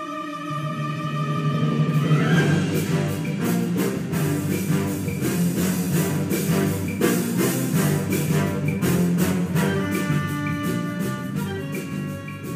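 A spy film theme plays as instrumental music, steady and fairly loud throughout, with sustained melodic tones over a busy, rhythmic backing of sharp percussive hits, and no one talking.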